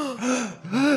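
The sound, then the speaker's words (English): A voice performs two quick, breathy gasps in succession, rising and falling in pitch, imitating a startled mob gasping all at once. Fairly loud, with no other speech. “So you don't receive any response that you're like looking up to the sky and looking around and you don't see anything at all, but all of a sudden everybody in the mob gasps.”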